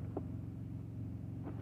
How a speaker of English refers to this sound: Hear any motors humming in the background? That's the things on my truck, okay? Or the truck next to me.